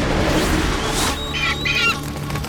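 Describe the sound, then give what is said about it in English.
A harsh eagle caw rings out as two quick, shrill squawks in close succession, loud, over a dense background rumble with no talking; the giant Tiasi lets it out as he transforms back into an eagle. “The giant let out a roar, then a caw, as he transformed back into an eagle and set off after his ancient enemy.”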